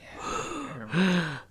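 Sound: voice imitating heavy breathing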